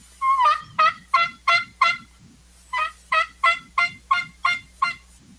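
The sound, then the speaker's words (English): A turkey yelp sequence played by a person on a basic tube call: two runs of about six sharp, evenly spaced raspy notes, loud, with a short pause between the runs and no talking. “Or even a yelp.”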